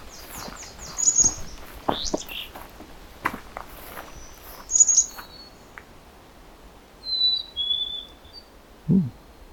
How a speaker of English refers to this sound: Some singing. It's the black-capped chickadee.